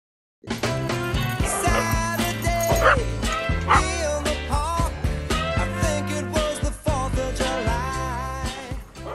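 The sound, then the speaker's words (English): Several dogs bark and yip excitedly at once in a dog park, a loud, dense, overlapping chorus that keeps going without pause over a steady, busy background. “Later on that day, Corgi and Gorgeous are in the dog park.”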